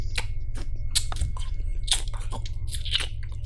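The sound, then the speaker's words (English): Two infected zombies chewing on the dead body of a person just shot with a shotgun: wet, crunchy chewing and biting with irregular squelching bites in a steady run over a low, droning rumble. Fairly loud, with no talking. “As you turn around, as you see, there's just an infected chewing on the dead body of the person you just shot.”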